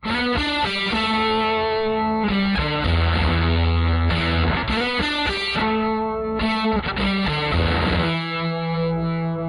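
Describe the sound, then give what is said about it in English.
A crunchy, overdriven electric guitar plays chords and short riffs through a boost pedal at mid-level with the tone stack on and the preamp gain stage added, giving gritty distortion and a noisy, buzzy edge, loud with no voices. “Now adding the gain stage in the preamp will increase the noisiness and amount of crunch or distortion.”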